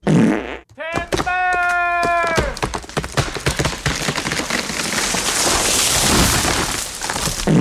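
fart

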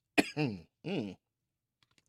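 coughing

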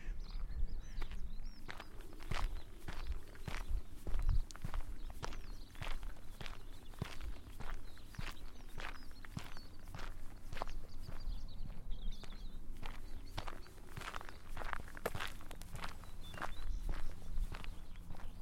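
footsteps walking outdoors

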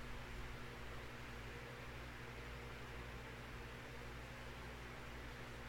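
white noise hiss

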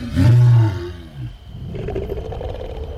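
lion roaring

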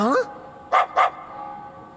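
small dog barking

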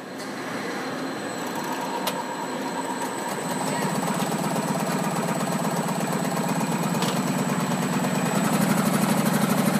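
motorcycle engine running

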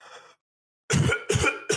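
cough

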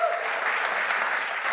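audience applause

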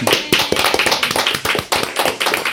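round of applause

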